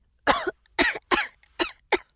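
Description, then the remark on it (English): A person coughs five times in a quick, fairly even series, each cough short and harsh, with brief silent gaps between them and no talking; the coughing is caused by the spicy taste of hot pepper sauce on a thumb. “it made him cough and made his tongue burn.”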